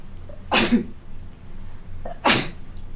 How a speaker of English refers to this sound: sorry, I get a sneeze.